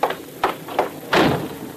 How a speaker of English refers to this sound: First, I'll close the door.